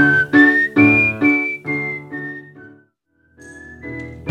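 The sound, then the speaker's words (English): A man whistles a melodic chorus line into a microphone, a run of sustained notes stepping up and down, pausing briefly before picking the tune back up, clear over a full, warm backing sound. “Is still keen to control what everyone plays, or in this case, whistles.”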